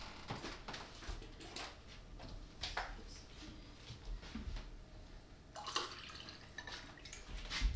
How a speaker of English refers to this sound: So the ice probably melted, but that's fine. We want, I'll pour sangria, who all wants? I do. I will take some.